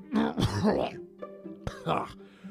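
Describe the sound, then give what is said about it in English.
A man's voice imitates a big man coughing up brackish seawater: a long, rough, wet, gurgling burst followed after a pause by a shorter hacking one, fairly loud, with a low groaning hum between. “The big man coughed up brackish seawater.”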